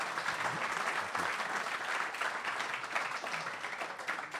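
A crowd applauds steadily, many hands clapping in a dense, sustained wash of sound that stays fairly loud and even throughout, with a faint voice or two underneath.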